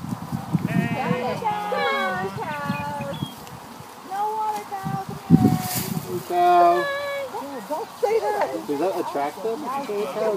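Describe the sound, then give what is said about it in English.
Several cows low and moo close by, their drawn-out calls overlapping and repeating throughout, while people talk over them in the foreground. “Come on, cow. They won't hurt you.”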